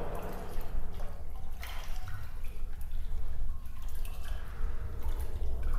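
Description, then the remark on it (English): Steady water sounds fill a tiled pool room with shallow water, dripping and trickling over a constant low wash and echoing off the hard surfaces; no one speaks. “Oh, good! More water!”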